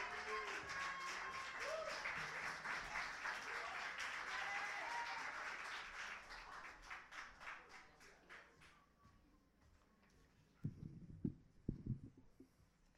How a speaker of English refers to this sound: You can clap for that. And keep on clapping for the last poet in this semifinal round.